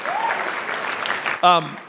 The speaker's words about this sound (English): Yeah, very cool. Clap for the man.